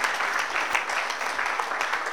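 A crowd claps steadily, a dense, even patter of many hands with no clear beat. It holds at a constant, moderate loudness throughout, with no talking over it.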